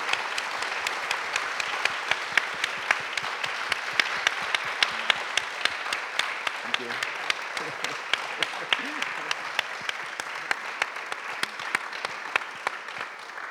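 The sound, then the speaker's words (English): Sustained audience applause for the speaker at the end of a lecture about artwork, a dense, steady patter of many hands clapping at an even loudness for over ten seconds, with no talking over it. “Please, another huge round of applause”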